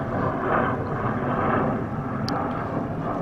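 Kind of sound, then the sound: vehicle, airplane flying overhead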